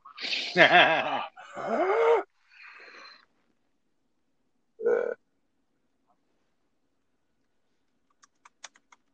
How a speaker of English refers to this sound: You like breathing through your mouth.